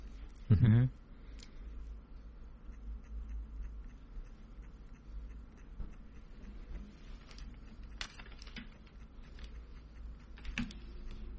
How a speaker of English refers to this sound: I'm assuming people can hear, because I can hear it in my headphones. You can hear our typing. I just thought we'd be patient about it.